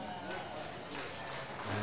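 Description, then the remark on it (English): The Eagles crowd in a stadium cheers after Goldsworthy kicks the Eagles' 10th goal late in the last quarter, a steady wash of mingled voices and applause at moderate volume that swells slightly toward the end. “Small bit of cheering from the Eagles crowd as Goldsworthy sets that one.”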